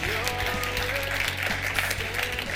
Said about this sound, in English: You can clap.